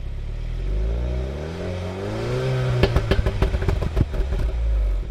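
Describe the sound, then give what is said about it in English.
A car engine in regular sport mode, with the exhaust flap still closed, revs up, pitch climbing steadily, then lets off into a loud rapid string of exhaust crackles and pops before settling back to a rumbling idle. “Okay, and the next thing I do, that's just in regular sport mode.”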